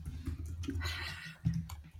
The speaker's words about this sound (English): The typing.